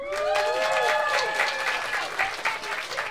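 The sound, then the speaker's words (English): An audience at the improvised stand-up comedy show Stand Up on the Spot claps in a dense, sustained burst of applause, steady and fairly loud throughout, with a few whistles or cheers ringing out early on. “By round of applause, who has never seen this show before?”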